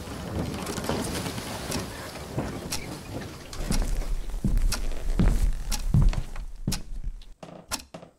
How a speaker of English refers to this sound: Every morning begins with Mom shouting through the house. The only thing worse than the yelling is the loud footsteps and the unavoidable